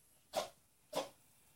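A cat sneezes twice in quick succession, two short sharp bursts about half a second apart, fairly soft, with no voices around them.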